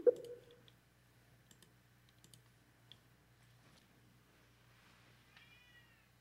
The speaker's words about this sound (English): God, my kitty. Yeah, my kitty is like fucking screaming over there.